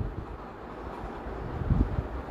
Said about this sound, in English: Listen to the waves.